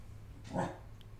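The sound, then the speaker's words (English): A female dog lets out one short, sharp yelping bark, a single burst in the middle of the moment, fairly soft against a steady low background hum, excited after breakfast was delivered. “So while the yelping continues, this is my mom's dog.”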